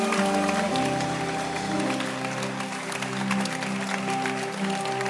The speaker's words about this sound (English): Please put your hands together this morning and let's welcome Bishop Ni Ajedu Ama all the way from the Kodesh. Keep clapping your hands.